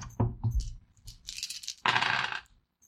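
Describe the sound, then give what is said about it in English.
Three dice are rolled for a check in a tabletop game, clattering onto a tabletop with a couple of sharp knocks first, then a burst of tumbling rattles settling after about a second. Fairly loud, no talking. “Make a fast check. Difficulty 3 dice.”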